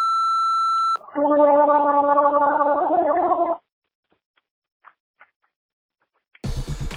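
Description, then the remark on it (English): A steady tone gives way to a loud, bubbly gargle of a mouthful of eggnog being slurped and twisted around in the mouth for a few seconds, then quiet with faint clicks, before a brief burst of noise at the end. “I just slurped, gargled, and twisted around in my mouth a mouthful of eggnog and drank it because I love eggnog so fucking much.”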